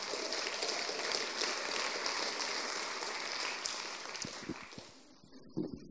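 A crowd applauds in a dense, steady patter of many hands clapping for about five seconds, then thins out into a few scattered final claps.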